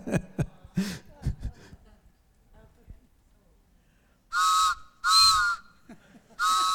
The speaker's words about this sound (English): I know it's weird, but let's just do it, right? And so she brought her train whistle this morning.